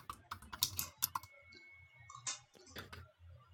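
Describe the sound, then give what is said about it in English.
Quick, irregular clicks of typing on a computer keyboard, fairly quiet, with bursts of keystrokes and short pauses between them, as someone types in topics. “I hear keyboards.”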